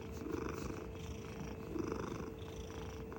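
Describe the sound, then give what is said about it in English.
A cat named Maisie purrs steadily, a continuous low rumbling motor with a gentle rhythmic swell of inhale and exhale, fairly loud and with no voices present. “And oh my God, the motor on this cat. Go ahead. Give this a listen.”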